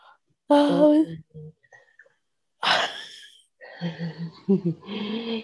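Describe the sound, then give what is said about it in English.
A drawn-out, voiced yawn with a strained, wavering tone, followed by a loud breathy exhale and then more groaning, stretched vocal sounds in short bursts. “ASMR, yawn.”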